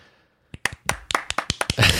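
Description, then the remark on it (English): A handful of sharp hand claps start after a brief quiet, quickening into a steady run and then swelling into a dense burst of applause, in response to news that Adobe is stopping development of mobile Flash. “Were you applauding me or saying it, or were you applauding Adobe?”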